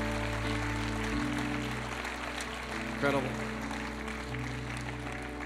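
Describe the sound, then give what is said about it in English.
A church audience applauds the Lord after a prayer of repentance, in a steady, dense wash of clapping over sustained low musical tones, while a single voice speaks briefly above the noise. “Would you give the Lord one big round of applause in this place?”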